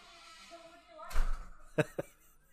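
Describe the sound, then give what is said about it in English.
A door shuts with a dull, heavy thud as a woman goes out through it, then two quick sharp clicks as it latches. Faint voices murmur in the background just before it closes. “She's going out the door.”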